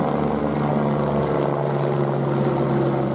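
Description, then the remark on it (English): A helicopter drones steadily overhead while changing direction, its engine and rotor hum holding a constant, fairly loud pitch throughout, with no voices. “Kyle Turner scored, Thistle 1-0 up, the helicopter's changing direction.”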